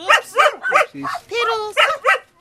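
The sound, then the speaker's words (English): A small white rat terrier named Abby, with pointy black ears, yaps in a quick series of sharp, high-pitched barks, broken midway by a short whining whimper before two more barks. “I meet this little rat terrier. She's white with pointy black ears, and her name's Abby.”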